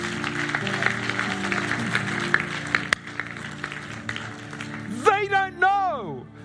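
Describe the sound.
An audience claps in a dense, steady wash of applause for about five seconds, then a loud voice cuts in over the fading clapping.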